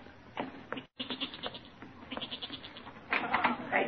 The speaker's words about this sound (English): No, that's not my father. That's the goat. He's getting restless down in the cellar.